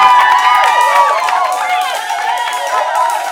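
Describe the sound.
A loud crowd cheers and whoops continuously, many overlapping voices rising and falling together in a dense, sustained roar for a few seconds.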